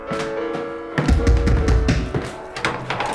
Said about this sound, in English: Leah, my God, I have been knocking forever. Three knocks is not forever